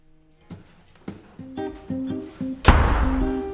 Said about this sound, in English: That's him slamming the doors and walking upstairs.